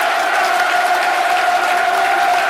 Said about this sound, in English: Crowd rightly applaud the players off the pitch.